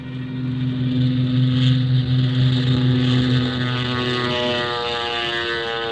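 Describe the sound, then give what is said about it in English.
A small propeller plane carrying Colonel Sawaka of the Japanese High Command takes off from a jungle airstrip, its engine droning loudly and steadily, its buzzing pitch shifting slightly as it powers up, with no voices over it. “We loaded Colonel Sawaka into the small plane.”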